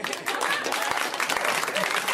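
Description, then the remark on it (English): A crowd breaks into applause, a dense, steady wash of many hands clapping at once that holds at an even loudness throughout, with a few brief shouts or murmurs mixed in. “Sometimes you just make a little extra effort, the rest of the audience, and you too could get a round of applause for yourselves.”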